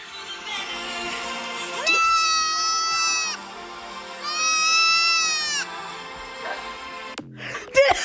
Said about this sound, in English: Yes, it was mostly cats and dogs at first. Mm-hmm. But then I got deep into the trend and my favorite is the goat.